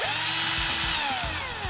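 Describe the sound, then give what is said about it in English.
A power drill whirs steadily, its motor pitch sliding and wavering slightly as it runs continuously for a couple of seconds, with no voices over it. “Drill! Drill!”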